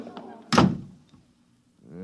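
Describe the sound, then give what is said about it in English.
An office door shuts with a heavy thud that rings briefly and fades, with muffled voices just before it and a man starting to speak right after. “Every time I open that door, they surge in like a tidal wave.”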